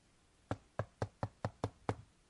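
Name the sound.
knocking on a door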